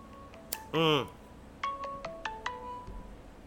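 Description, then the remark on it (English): A phone ringtone chirps from an incoming call: a brief warbling burst followed by a quick run of bright, bell-like electronic tones stepping in a short melody, fairly loud over a quiet background. “That's what happens when I forget to mute my phone. I get a phone call every time.”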